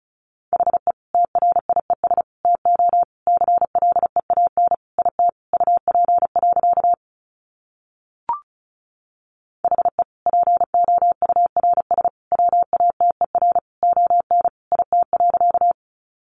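Fast Morse code beeps at 35 wpm: a steady mid-pitched tone keyed in rapid dots and dashes, broken by a brief pause and a single click before the keying resumes.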